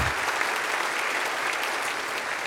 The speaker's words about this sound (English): Now you can applaud, not awkwardly.